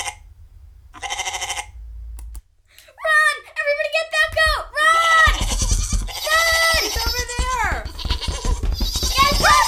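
Several goats bleat repeatedly, their wavering, quavering calls overlapping and growing busier, loud over a low rumbling background.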